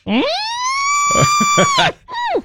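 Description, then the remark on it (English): A bull elk, the lagoon elk, bugles in the rut: a loud, shrill whistle rises steeply and holds for over a second, with throaty grunts pulsing beneath, then drops away before a shorter falling squeal ends it. “We can hear the lagoon elk.”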